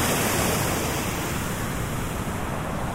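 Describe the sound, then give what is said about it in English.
A steady, full roar of river water rushing over stones covered in very long green moss, unbroken for the whole stretch, with no voices or other sounds breaking through. “So each of these stones that the water is rushing over are covered in this very long green moss, like the long green hair of some kind of children's book monster.”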